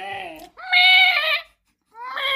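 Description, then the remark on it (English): A voice imitates a wailing, dying cat with three strained, high-pitched yowls, the middle one longest and loudest, separated by a brief pause, alone. “That was a dying cat.”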